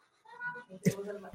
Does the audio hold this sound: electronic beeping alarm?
no